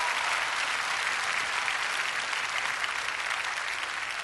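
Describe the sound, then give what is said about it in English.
A church audience breaks into sustained applause as a clap offering praising the Lord, a dense, steady wash of clapping that holds at an even level for several seconds with no voices standing out. “Somebody give the Lord a clap offering and praise him.”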